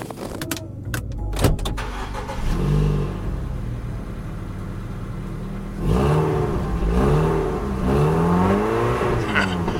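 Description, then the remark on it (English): The engine of a car called Carface revs in response, its pitch climbing and falling in a few surging swells over a steady low rumble, fairly loud, with no one speaking. “I never felt like I had to break the ice with a car before, but...”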